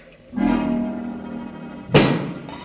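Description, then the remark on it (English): In a coal mine, a single sharp, heavy knock cuts in over a steady, humming drone tone, loud and abrupt, then fades quickly back into the continuing hum. “What makes that knocking?”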